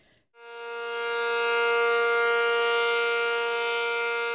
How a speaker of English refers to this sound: Este es el sonido de una sirena de emergencia en Contracosta. La sirena es simplemente una alerta advirtiendo que hay un posible peligro en su área. El sonido de la sirena se escucha el primer miércoles de cada mes a las 11 de la mañana.